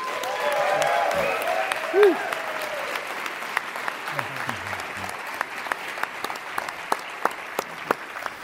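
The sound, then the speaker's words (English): An audience applauds a guest being introduced, a former senior engineering manager at Facebook. The dense applause holds fairly loud before thinning into scattered individual claps toward the end, with a brief vocal whoop partway through. “And you better really give this guy a round of applause, because he was a former senior engineer manager at Facebook,”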